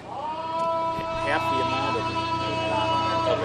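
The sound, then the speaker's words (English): A steady, low engine drone runs throughout: a zoo train's 60-horsepower four-cylinder motor chugging along at a constant pace with faint whining tones, pulling six cars full of people, while indistinct voices murmur in the background. “This is a 60-horsepower four-cylinder motor pulling six cars full of people.”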